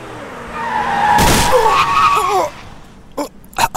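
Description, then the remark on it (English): A car's tires screech in a long, loud, wavering skid that ends in a sharp crashing impact as the car hits a person, followed by a few short clattering knocks as the noise dies away. “You have just been hit by a car”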